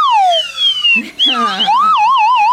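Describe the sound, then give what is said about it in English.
A toy trombone slide whistle swoops downward in a long gliding tone, breaks off briefly, then returns with a bright, wobbling warble that bends up and down, loud. “And then we got the trombone whistle.”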